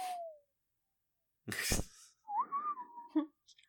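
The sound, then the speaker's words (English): A person whistles a short, eerie Western-style phrase as a Wild West theme, a sliding opening note and then a wavering melody, broken by a sudden loud breathy burst; fairly clear. “No more whistling, I promise.”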